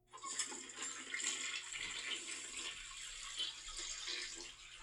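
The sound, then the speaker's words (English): A toilet flush sound effect: a loud, steady rush of water that swirls and gurgles for several seconds, with no voices. “This is Paul's toilet water certification.”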